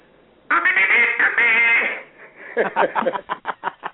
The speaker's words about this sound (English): He would have probably picked up his duck call if he was across the street, and he would have probably did this.